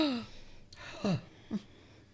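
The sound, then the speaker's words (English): A dramatic gasp from a voice, followed by two short, sharp intakes of breath with a falling, voiced edge, spaced about half a second apart. “Gasp.”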